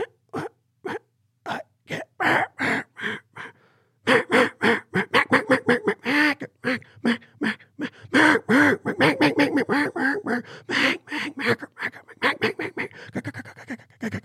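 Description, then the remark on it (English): A duck call imitates a hen mallard: a sparse string of short, evenly spaced quacks, then a fast, loud, raspy run of rapid quacks. “And that's how a hen mallard talks.”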